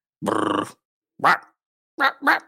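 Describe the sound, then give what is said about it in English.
A person imitates the Wolfman with a wolf's growl in four rough, guttural bursts: one long, rasping snarl followed by three shorter grunting growls, fairly loud, with no talking. “How does it feel to be turned into a wolf?”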